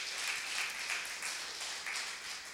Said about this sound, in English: Come on, give him a clap offering this morning because he is awesome.